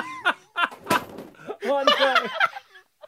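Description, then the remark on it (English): A chair pushed back by someone laughing bumps hard into a listener stand, almost knocking over a banner, making one sharp knock amid loud, breathy laughter, with more laughing and voices continuing after the impact. “Laughed so hard he pushed his chair back into the listener stand and almost knocked over the banner.”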